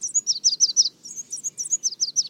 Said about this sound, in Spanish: Así es como se escucha una mañana soleada. Las reinitas rojas son mucho más pequeñas de lo que puedes imaginar. Miden menos de 13 centímetros de largo y pesan apenas unos 9 gramos, menos que una batería AAA.